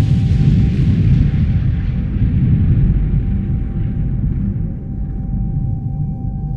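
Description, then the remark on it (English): A muffled, heavy explosion of equipment and gadgetry inside a room behind a closed door, deep and loud, its hissy crackle slowly fading over several seconds above a faint steady hum. No voices. “They run out of the room, and the door closes behind you, and you hear from the inside a muffled explosion of equipment and gadgetry.”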